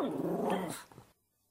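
A dog, not a Kelpie, Fox Terrier or bulldog, gives a single loud growl lasting about a second, rising into a rough, bark-like snarl before cutting off abruptly into silence.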